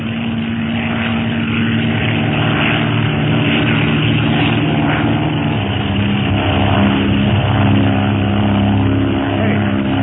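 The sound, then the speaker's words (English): A propeller airplane, painted black, drones loudly and steadily, its engine buzzing with a constant throbbing hum as it flies by, with no voices heard. “It's a plane, all right.”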